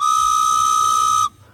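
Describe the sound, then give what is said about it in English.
A single loud, steady train whistle blast holds one bright, high pitch with a hissy steam edge for over a second, then cuts off abruptly into near silence. “All aboard. Hype train.”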